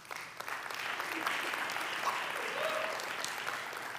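An audience applauds steadily, a dense wash of many hands clapping at an even loudness throughout, with a faint voice or two briefly rising above the clapping.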